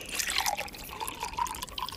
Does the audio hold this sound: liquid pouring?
yes